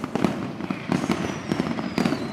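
A quick volley of firework bangs and crackles, several sharp bursts in close succession with a faint whistling streak overhead, loud, with no voices.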